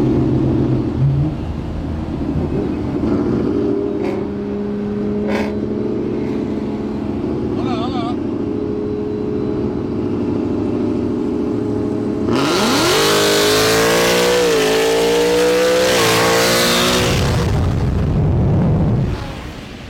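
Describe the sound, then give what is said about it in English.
A street car's engine idles with a steady low rumble, then roars loudly as it revs and accelerates hard in a street race against another car in Arizona, rising harmonics sweeping upward through gear changes, dominant before easing off near the end. “Called the dude out. Gapped the shit out of him, respectfully.”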